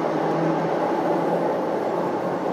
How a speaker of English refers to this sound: Now, the danger of recording a podcast in a train station is that trains are going to come in all the time. But hey, we'll try and live with it.